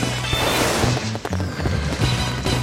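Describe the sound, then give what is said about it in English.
Fireworks of every color burst overhead in a loud, dense barrage, several sharp booms landing over a steady crackling roar, with a low droning hum underneath and no one talking. “And your eyes are drawn skyward as an explosion of bright light erupts overhead. Brilliant fireworks of every color cascade down from above”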